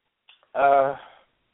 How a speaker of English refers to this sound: I just sneezed, and apparently I'm allergic to the way the Lions have been playing.